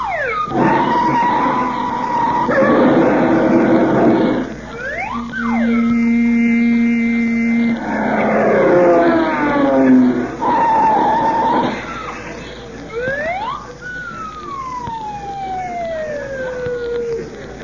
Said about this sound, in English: I'll go across Sunset Boulevard and get it. Now, be careful. The traffic's mighty heavy.